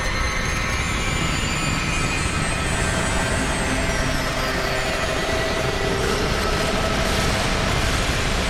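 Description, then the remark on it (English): A distorted bytebeat synthesizer patch roars in a dense, steady wall of gritty noise with faint whining tones threaded through, loud and unbroken for the whole stretch, with no voices. “We could CV the mix on the distortion. I kind of love the doom vibe.”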